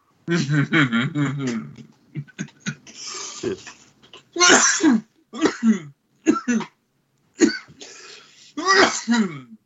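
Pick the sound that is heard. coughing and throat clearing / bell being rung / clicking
coughing and throat clearing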